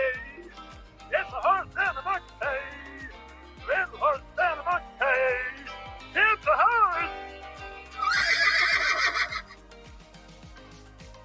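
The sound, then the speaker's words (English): A horse neighs and whinnies repeatedly in loud bursts over a steady low thumping beat, ending in a long, high, shrill whinny; it is the 'horse in a bookcase' from Phineas and Ferb. “Now I'll let you hear it. It's a horse in a bookcase.”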